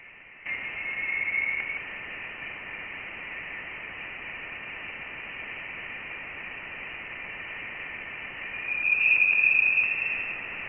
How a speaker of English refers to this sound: actual signal that we've detected is very weak, so it's really hard to actually make it audible to human ears without significant manipulation, but that's why we often call it a sound. And here's that sound from Voyager. Take it away, ionized gas.